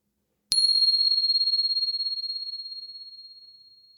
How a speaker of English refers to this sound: And here comes the bell.